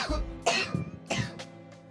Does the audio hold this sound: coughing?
yes